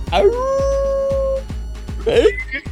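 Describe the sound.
A man imitates a wolf with a long, rising howl, then follows with a shorter, yelping howl, both loud over a steady thumping beat.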